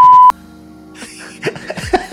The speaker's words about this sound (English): I wonder if he'll beep this one out.